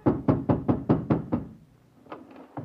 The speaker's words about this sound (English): I ran back home in despair. I hammered on my landlady's door and...